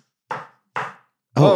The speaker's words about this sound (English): They're knocking on the window?